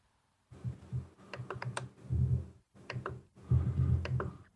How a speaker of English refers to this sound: I hear the clicking. Clickety click. Somebody's typing. Yeah, I'm sending it to you down through that.